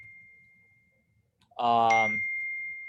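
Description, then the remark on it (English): A phone notification chimes with a bright electronic ding over a thin, steady tone that lingers to the end, while a voice briefly speaks over it. “What is that? It's my phone going off.”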